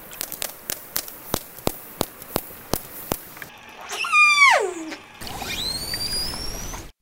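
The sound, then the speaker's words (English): About a dozen sharp echolocation clicks from an orca (killer whale), recorded on a tag attached to the animal, tick at a steady pace, followed by loud whistled calls: one sweeping downward with rich harmonics, then a second, higher tone bending upward. “Yeah, so first we were hearing a few echolocation clicks. And after that, another sound these animals make, and this is definitely in a higher frequency range, right?”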